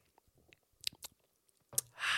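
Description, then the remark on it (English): Someone sips a whiskey shot: a few small wet mouth clicks and smacks, then a short airy slurp rising at the end, with no talking. “But we do have some whiskey shots”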